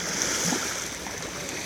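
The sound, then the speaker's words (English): Ocean waves wash steadily onto a beach of very fine sand, a continuous broad hiss of surf without distinct crashes, moderately loud, with no voices. “That's the lovely sound of the ocean you can hear.”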